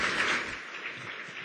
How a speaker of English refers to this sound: Now I would like to ask the District 6 San Francisco City Supervisor, Ms. Jane Kim, to please come to the stage for a few words. 皆さん、大きな拍手でお願いします。A round of applause.